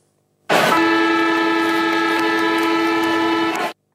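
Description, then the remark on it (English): The Subiaco (Domain Stadium) siren in Perth sounds one long, loud blast of about three seconds, holding a steady, rich, horn-like pitch before cutting off abruptly. No voices are heard. “So at number five, I've got the Subiaco or Domain Stadium siren from Perth.”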